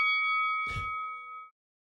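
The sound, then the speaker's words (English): A single bright bell ding rings out with a sharp attack and a steady ringing tone that sustains for about a second and a half before cutting off, with a brief low thump midway. “There's the bell right there.”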